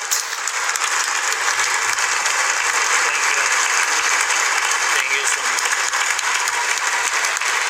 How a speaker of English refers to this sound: Wow, they're still clapping. Look, look, people.